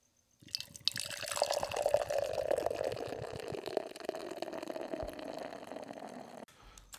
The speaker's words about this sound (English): Beer is all poured out. Had a great, great rocky head. It's a very tanned latte-esque color to the head.